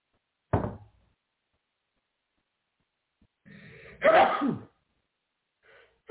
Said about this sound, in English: Excuse me, everybody. I tried to save you that sneeze. I hope I did.